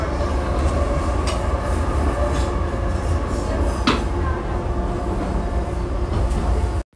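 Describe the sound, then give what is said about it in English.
Inside a moving train carriage heading from Herring Keys to the next stop, South Key: a loud, steady rumble and rattle with a couple of sharp clunks from the tracks, no voices, cutting off abruptly at the end. “When leaving the train, please remember to take all your belongings with you. The next stop is South Key.”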